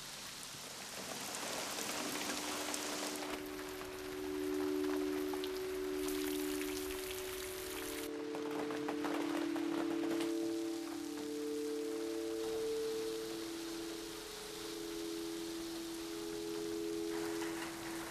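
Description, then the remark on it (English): Steady rain falls without a break, a dense, even hiss of countless drops pattering on surfaces, with a faint low tonal hum running underneath throughout. “Rain brings out the contours of what's around you in that it introduces a continuous blanket of differentiated and specialised sound, uninterrupted, which fills the whole of the audible environment.”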